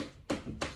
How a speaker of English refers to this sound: Is someone knocking on the door, dear?